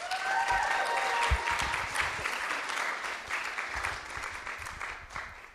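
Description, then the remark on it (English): A crowd bursts into loud, sustained applause for a guest speaker at an evangelism seminar, a dense wash of many hands clapping that holds steady before gradually thinning, with a few brief whistles early on. “So let's give her a massive round of applause.”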